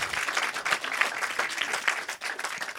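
A crowd breaks into steady applause, many hands clapping in a dense, continuous patter that holds fairly loud and even for a few seconds with no voices standing out.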